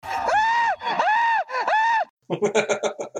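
A man bungee jumping down the Corinth Canal, in a preview of The Amazing Race, lets out three long, loud, wavering screams in quick succession, followed by a burst of breathless, choppy vocal sounds like gasping laughter.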